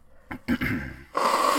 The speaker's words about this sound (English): Okay, edit break. Because I gotta blow my nose again.